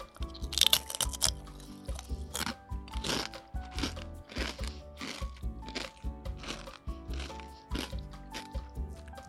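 Loud crunching of a sweet, crispy pork sheet snack, with a steady rhythm of sharp, brittle bites and chews repeating roughly every half second. No talking.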